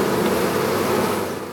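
A dense, steady drone of thousands of honeybees buzzing around dozens of hives at a bee farm in Pleasant Mount, Wayne County, in the Poconos, loud, with no pauses and no voices over it.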